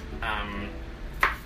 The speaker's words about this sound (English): Like, sorry, I'm like chopping vegetables while I talk to you.